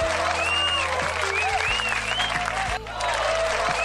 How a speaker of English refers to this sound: Yo, shout out, hold on, I gotta give air horns and a round of applause to her. Shout out to China Anne McClain.